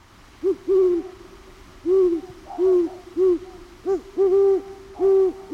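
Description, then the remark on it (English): A great horned owl hoots a deep, soft series of about eight mellow notes in a stuttering rhythm, some paired closely together, clear with no talking. “And now the great horned owl. And we're listening for who's awake? Me too.”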